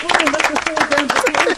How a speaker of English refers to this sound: I'm going to give you a round of applause for a brilliant question as well.